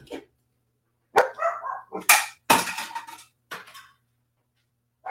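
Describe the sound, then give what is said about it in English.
Dogs barking loudly, a series of sharp, harsh barks in irregular bursts with short pauses between them, and no one talking. “My dogs are idiots.”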